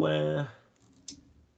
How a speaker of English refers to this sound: What are you doing over there? Flicking switches? Flicking switches. I think it's clicking your mouse?